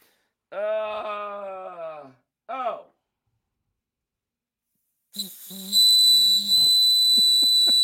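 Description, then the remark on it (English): A small orange bird whistle is blown in a warbling, trilling call with a wavering pitch, followed by a shrill, sustained high whistle with bubbling, fluttering chirps near the end. “It's a bird whistle.”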